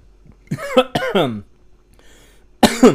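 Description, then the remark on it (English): A loud burst of harsh coughing from someone who choked while drinking water: a few rough hacks in quick succession, then a short pause before another strong cough. “Excuse me, I was drinking water.”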